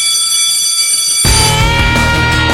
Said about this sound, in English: The bell's ringing.